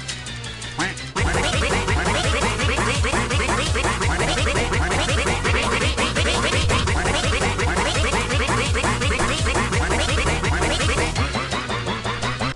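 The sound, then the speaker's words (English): A dense, blaring barrage of duck quack sound effects, loud and distorted, piling on top of each other almost nonstop for about ten seconds after a brief quieter start. “We should do the infamous quack.mp4 in space.”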